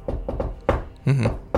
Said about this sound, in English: And she will knock on the top of the lid